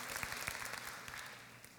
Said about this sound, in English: Thank you very much. You can go back to your seat, okay? They deserve a round of applause, okay? Thank you.